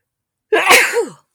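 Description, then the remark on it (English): A single loud sneeze: a sudden breathy burst that trails off into a short voiced tail, with silence before it and no talking around it. “Two sneezes today.”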